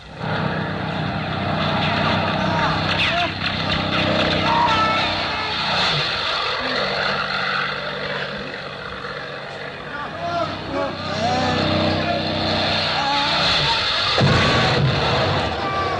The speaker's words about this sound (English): Look, a plane! There are two of them! Very off the ground!